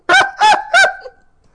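A goose honks three times in quick succession, loud, each call a short harsh nasal blast, with a brief trailing note fading out afterward and no voices around it.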